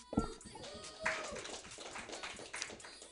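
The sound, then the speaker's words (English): Audience applause at a comedy show on a Friday: a dense, steady patter of many hands clapping for about three seconds, with a couple of sharper bursts and faint crowd voices mixed in. “Can you give it up for yourselves?”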